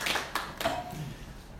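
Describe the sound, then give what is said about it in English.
A brief smattering of applause: a few people clapping in quick, uneven bursts that fade within about a second, with no voices over it. “Quick round of applause for Aryeh.”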